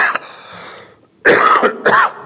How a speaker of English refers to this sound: excuse me, I have a little cough too.